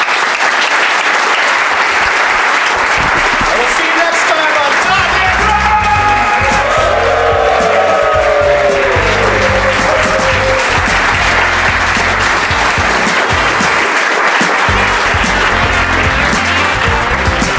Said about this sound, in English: Big round of applause for our panel.